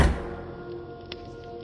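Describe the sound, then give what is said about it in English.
A single dull bang thuds at the very start, a door banging upstairs in a house while a high wind blows outside, then fades into a low, steady hum with no voices. “Outside, the wind was higher than ever, and the old man started nervously at the sound of a door banging upstairs.”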